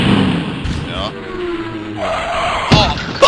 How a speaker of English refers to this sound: All I remember is putting in fourth gear, and that's when I lost traction. I did a donut. To the wall. Straight to the wall.